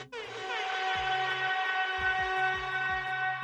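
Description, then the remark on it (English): A loud, sustained hockey goal siren blares with a steady, rich chord, holding for several seconds while low rhythmic thumps pulse underneath. “Let the siren go, buddy.”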